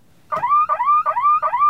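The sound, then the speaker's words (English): A loud electronic woo-woo alarm sound effect, with four quick rising whoops repeating in a steady rhythm, clear with no voices. “The simulation hypothesis is a really interesting subject, but before I get into any specifics, I want to show off my patented new woo-woo alarm.”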